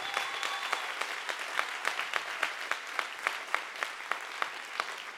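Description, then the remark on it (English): A church audience applauds its pastors and leaders steadily, a dense wash of many hands clapping with sharper, rhythmic claps punching through at a regular beat, moderately loud and sustained throughout with no voices. “If we could just clap our hands for our pastors, our leaders.”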